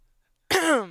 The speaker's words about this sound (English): I like how he cleared his throat in the mic.